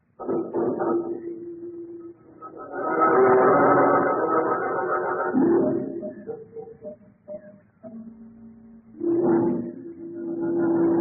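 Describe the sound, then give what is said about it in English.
A car engine struggles and strains, revving up in uneven surges with a rough, droning hum that drops and rises again, with no voices. “What's wrong with the car?”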